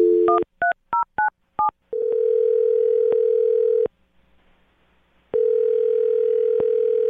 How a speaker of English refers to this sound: All right. I'm going to dial him right now, get him on the phone, and see if we can find out why he's not getting back to you, okay?